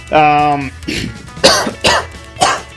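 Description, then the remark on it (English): Someone clears their throat with a drawn-out, voiced rasp, then lets out three sharp, loud coughs spaced roughly half a second apart, on air during a Real Punk Radio broadcast. “Need to clear my throat with a little bit of whiskey.”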